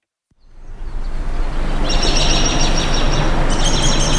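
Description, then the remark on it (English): A recording of birds, recorded at Roxham, plays in an art museum at SUNY Plattsburgh: birds chirp in a steady, overlapping chorus against a broad outdoor hiss, their high calls swelling in after a moment and continuing throughout, with no voices present. “A recording of birds chirping plays from a small corner of SUNY Plattsburgh's art museum.”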